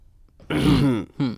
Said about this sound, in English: Not even like a clear throat, just little hums. I don't know why.